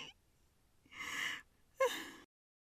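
A man gasps sharply twice in quick succession, a long breathy intake followed by a shorter, more startled one, fairly loud with no talking, as he recoils from a woman's touch.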